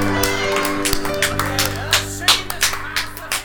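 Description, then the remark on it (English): Scattered, uneven hand claps ring out over a small group's cheers and excited voices, with a steady low hum running underneath throughout. “Slow. Clap.”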